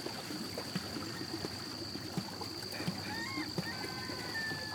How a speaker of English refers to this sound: Before you know it, the man pushes off the land with his oar, and the tour was on its way.